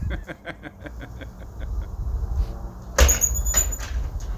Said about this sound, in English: Oh, and this blonde, she couldn't even figure out the door. This is priceless.